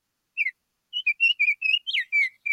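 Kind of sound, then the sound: bird, baltimore Oriole song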